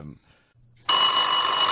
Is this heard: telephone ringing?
yes